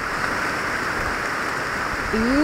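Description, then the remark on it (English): Steady, dense rain hisses continuously at night in an old-growth forest in Borneo, a soft even wash of drops with no breaks; near the end a brief voice-like tone rises over it. “This is the rain at night in an old growth forest in Borneo.”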